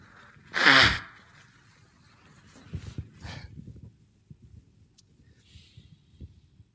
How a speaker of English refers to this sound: Excuse me, I'm going to blow my nose.